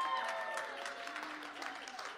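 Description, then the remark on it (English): An audience in Atlanta claps steadily, a dense wash of overlapping hand claps with some murmuring voices mixed in, holding at a fairly even level throughout. “You better take your opportunity to clap because that might be the last time for the day.”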